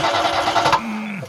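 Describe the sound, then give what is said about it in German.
An old car engine cranks with a rough, rhythmic churning that never catches, then a steady low whine holds briefly and sags away as it fails to start. “Ja, wird anscheinend Zeit für ein neues Auto. Die olle Karre ist ja durch.”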